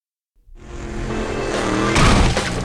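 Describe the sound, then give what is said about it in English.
After a brief silence, a car engine bursts into a loud, sustained roar at high speed as a car driven by a woman is chased by another car outside Lubbock, Texas, growing harsher and louder near the end, with a hint of tire noise and no talking. “A car with a female driver is being chased by an unknown assailant outside of Lubbock, Texas. Both cars are driving fast”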